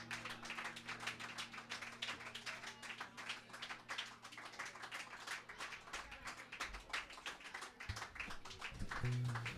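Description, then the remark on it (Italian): An audience applauds steadily for about ten seconds, a dense, continuous patter of many hands clapping, with a low steady hum beneath and a slight swell toward the end. “Lo so, mi volevo godere questo applauso fino alla fine.”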